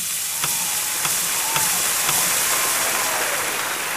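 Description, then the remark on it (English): Steak sizzling loudly in a hot pan, a dense steady crackle and hiss with five faint pulses spaced about half a second apart: five steak sizzles congratulating five home closings from the past week. “So as is tradition here on the Savvy Realtor, in order to congratulate those 5 closings from the past week, 5 steak sizzles.”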